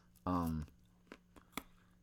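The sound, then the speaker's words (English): A short voiced hum gives way to three crisp crunches spaced unevenly, as someone bites and chews a crunchy mango. “Mangoes are not supposed to be crunchy.”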